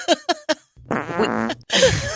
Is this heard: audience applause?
no